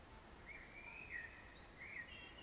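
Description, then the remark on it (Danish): A bird sings softly, several short warbling phrases drifting over a low, steady outdoor hum, with no one talking. “Den fugl, der synger i baggrunden.”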